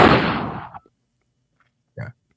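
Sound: gunshot sound effect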